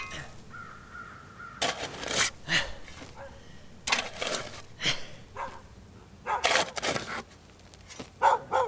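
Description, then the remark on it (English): A dog barks in sharp, harsh bursts, several loud barks in irregular clusters, with a steady low background hum between them and no talking. “Damn dog, go away.”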